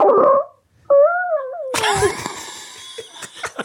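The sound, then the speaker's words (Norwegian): A fart sent in by a listener, the third in a series: a brief raspy burst, a short pause, then a squeaky, whistling tone that slides downward in pitch, trailing into a longer, noisy, sputtering stretch that fades out unevenly. “Så her fis innsender nummer 3.”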